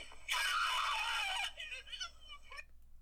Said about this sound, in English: Is the real scream of a woman breaking her coccyx. Here it is again.